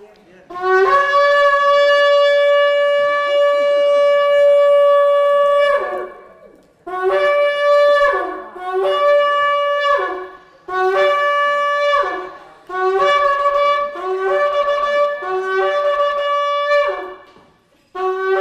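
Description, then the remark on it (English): A shofar sounds loud and alone: one long sustained blast, then a series of shorter blasts with brief breaks, its bright, reedy tone rich in overtones. “Sound the shofar.”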